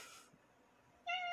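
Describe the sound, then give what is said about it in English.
A single cat's meow, fairly loud, starts abruptly near the end after a brief burst of hiss and a quiet stretch; no one speaks. “My cat does too.”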